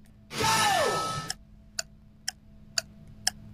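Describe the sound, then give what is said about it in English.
A Timex clock ticks in a steady rhythm, about two crisp clicks per second, right after a brief breathy whoosh with a falling tone at the start. “It's ticking. Like a watch. Oh, it's a clock.”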